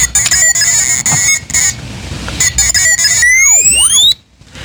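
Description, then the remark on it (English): Electronic beeps and warbling whistles of the droid R2-D2, casting a vote, loud and alone, with steady tones broken by stutters, ending in a fast burst of rising and swooping chirps before a brief quiet. “what does R2-D2 have to say?”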